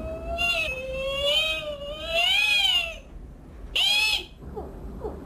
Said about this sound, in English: Must be a whale that's moving around. Yeah, it's moving around.